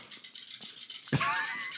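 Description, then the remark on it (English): Dice rattle quickly in a series of light clicks for about a second, then a sudden louder clatter breaks in, joined by a brief high, whining tone. “So, go ahead and roll your dice there”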